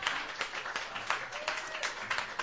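An audience applauds at a live music event at Hulbert's, with scattered, uneven claps in a steady patter, moderately loud, with a faint whistle rising briefly partway through.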